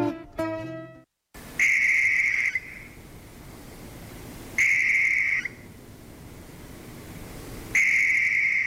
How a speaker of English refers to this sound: The barn owl is present on every continent except for Antarctica, yet in Indiana this owl has been on the state's endangered list since the early 1980s. Barn owls are 16 inches tall, weigh around 1 pound, and their wingspan is almost 4 feet.